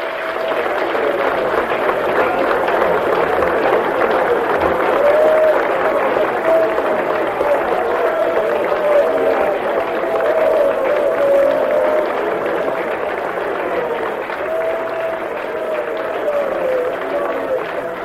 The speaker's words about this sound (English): Let's give him a real hearty clap, shall we? Bless him.